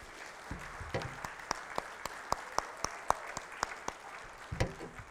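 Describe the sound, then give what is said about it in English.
An audience claps as a clap offering to the Lord, with a steady wash of many hands and sharper individual claps standing out at a fairly regular rhythm, moderately loud and without talk over it. “Now, Terry, can we just give the Lord a clap offering for Terry, right?”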